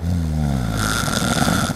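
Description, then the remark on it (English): A walrus sleeping on ice in the Arctic snores: a deep, rumbling drone that slides lower, then turns into a loud, raspy, breathy rattle, one continuous snore with no voices. “Next, I spy a walrus sleeping on some ice below us.”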